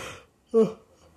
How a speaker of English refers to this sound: Again, I'm so sorry for the yawning.